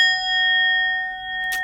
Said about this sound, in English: Okay. So, I'm going to go ahead and ring the bell.